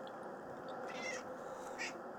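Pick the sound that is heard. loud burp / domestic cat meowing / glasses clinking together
domestic cat meowing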